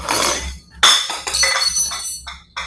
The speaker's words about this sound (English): Oh dear, I pushed something off the tray, I spilled, I think.